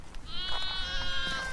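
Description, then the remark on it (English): A sheep bleats in one long, wavering call on a sustainable, ethical sheep farm, clear, with low outdoor rumble underneath and no voices. “who runs a sustainable, ethical sheep farm and also maintains a conservation area.”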